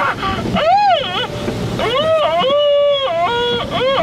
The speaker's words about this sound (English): Well, we're still in the car wash.